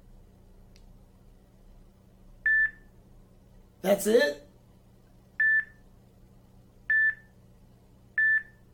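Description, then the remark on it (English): Four identical electronic beeps, the ringtone of an old, slow cell phone, repeat at a steady interval of about 1.5 seconds, clear and moderately loud, with a short remark spoken between the first and second beep. “What is your ringtone?”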